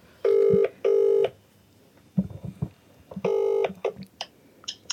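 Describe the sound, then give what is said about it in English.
A phone ringback tone on loudspeaker during a prank call, two long ring bursts, a short gap with faint rustling and low voices, then a third ring, sounding slightly tinny. “Put her on loudspeaker and say something funny. I will, yeah. Hopefully she picks up.”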